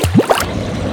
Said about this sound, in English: I felt lighter, and my movements unhindered by age as I joyously ran to the nearby creek. I walked into the rushing water fully clothed and immersed myself completely.